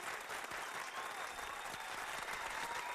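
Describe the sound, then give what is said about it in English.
Steady, sustained applause from an audience welcoming guest Barbara Chase-Riboud on the Karen Hunter Show, a dense wash of many hands clapping at an even level throughout, with no voices standing out above it. “Yes, let all the applause because you deserve it all.”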